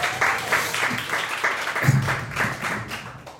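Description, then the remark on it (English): A crowd applauds with steady, rhythmic clapping, broad and fairly loud, with some cheering mixed in; the clapping pulses roughly every third of a second throughout. “And they'll cheer, everybody.”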